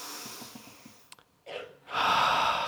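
A deep breath drawn in with a brief airy rush, a short pause, then a long, loud exhale streaming out for about a second, taken as a group breathing exercise, with no talking.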